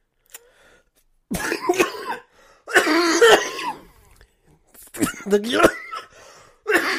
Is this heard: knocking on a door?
no